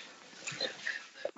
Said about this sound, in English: Excuse me. Hold on. I got to sneeze.